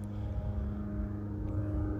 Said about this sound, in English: There's an airplane. You guys might pick up on that. It's flying above me.